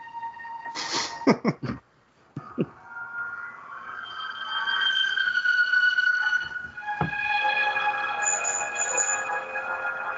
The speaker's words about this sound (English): What's that? Sounds like a bell.